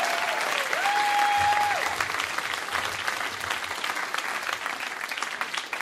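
A crowd applauds loudly and steadily for several seconds, dense clapping from many hands with a brief whistle-like tone near the start.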